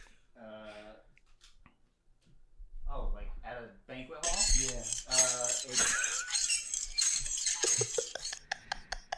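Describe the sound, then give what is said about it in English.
Plates smash on the ground in a loud, sustained burst of crashing and bright ceramic clatter, trailing off into a few sharp clinks. Voices are heard briefly before the breaking starts. “They're just smashing plates on the ground.”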